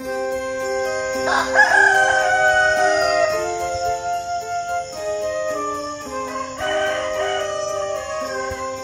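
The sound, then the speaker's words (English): A rooster crows loudly, a long drawn-out cock-a-doodle-doo, then crows again a few seconds later over a steady background of sustained musical tones. “Can that blasted rooster keep its beak shut?”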